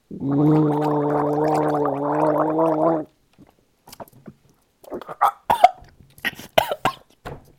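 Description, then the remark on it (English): A person gargling water in the mouth: a steady, bubbling gargle lasts about three seconds, with a wavering pitched hum under it, then breaks off into sputtering, choking coughs and short breathy bursts as they choke on the water. “I was just making water noises because it's a water movie.”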